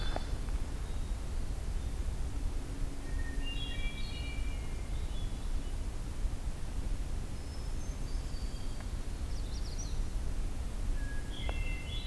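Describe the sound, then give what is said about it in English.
A magnolia warbler sings short, high, faint phrases several times, repeating every few seconds over a steady low outdoor rumble. No one speaks. “I was right, magnolia warbler.”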